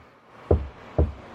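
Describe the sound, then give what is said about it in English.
Two dull, low thuds about half a second apart, footsteps faked by hand as a sound effect of walking up to a car and moving further away, tapped out in a steady walking rhythm with nothing else sounding. “Of course, you hear my footsteps walking up to the car, getting further and further, as far as my hands can get away from my body to make the sound effect.”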